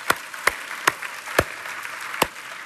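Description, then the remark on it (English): A few sharp hand claps land at uneven intervals over a soft, hissy wash of scattered clapping from a church audience applauding the speaker's wife, with no one speaking. “would you clap your hands for her? I'm gonna clap if nobody else does.”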